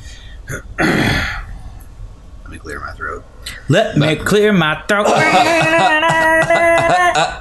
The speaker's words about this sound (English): Let me clear my throat.